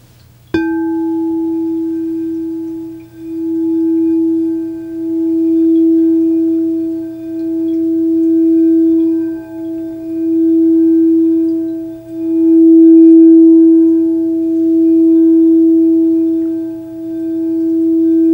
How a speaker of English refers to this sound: Now let's tune into these tones together. This is the solar chakra tone, E.